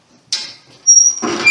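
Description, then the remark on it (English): The door of a 12 by 16 general confinement jail cell, used by locals and the military, swings open with a sharp metallic clack, then a thin, high-pitched creak that swells into a louder grinding rattle, with no voices. “I'm going to open the door here, and you'll get to hear the wonderful creak of a jail cell opening up.”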